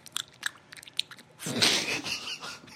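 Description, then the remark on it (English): Wet, clicky chewing mouth noises in quick irregular bursts, then a louder, longer breathy smacking rush of sound. No one speaks. “The mouth noises are ridiculous.”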